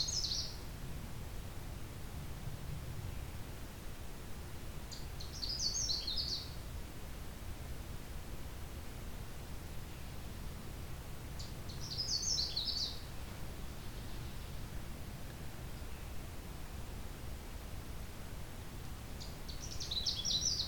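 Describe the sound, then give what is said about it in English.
A Canada warbler, on territory in late June, sings short, bright bursts of song, repeated about four times at intervals of several seconds, just up ahead, over a steady low rumble of background noise. “Okay, we got a Canada warbler just up ahead.”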